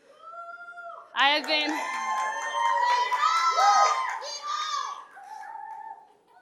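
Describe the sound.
A child from a church youth group imitates a donkey's hee-haw with loud, wavering, pitch-swooping cries, set against a lively group of children shouting and cheering for several seconds.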